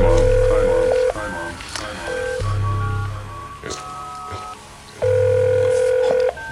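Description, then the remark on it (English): A phone dials Domino's to order a pizza with a few quick tones, then rings out in steady electronic bursts of about a second each, separated by short pauses, fairly loud with a low hum underneath. “Hold up, we're taking a phone call. I'm ordering a pizza.”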